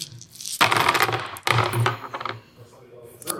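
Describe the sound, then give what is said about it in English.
A big handful of dice clatters loudly onto a hard table in two close bursts of rattling and tumbling, then settles into lighter scattered clicks as the dice come to rest. “Oh, so many dice.”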